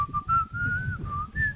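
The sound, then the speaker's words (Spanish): A man holding a basketball at a traffic light at 10:50 at night whistles a slow, plaintive tune in long held notes that glide gently up and down, clear, over a low rumbling background. “Y el silbido todo triste.”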